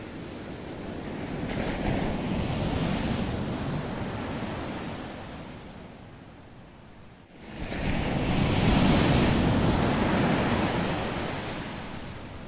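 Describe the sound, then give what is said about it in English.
Ocean waves at the beach roll in steadily, a broad wash of surf that swells, fades into a quieter lull, then surges back loud. No voices are heard. “my favorite sound in the world is the sound of the ocean at the beach.”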